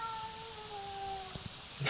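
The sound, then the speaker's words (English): A faint, drawn-out cat meow slowly sliding down in pitch over a quiet background, followed by a couple of soft clicks. “Can you hear a cat?”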